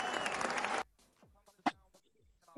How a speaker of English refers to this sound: got cut out by the clapping, but we're moving to pyramids.